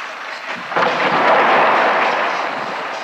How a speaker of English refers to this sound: Loud explosions, but they're actually up in the mountains.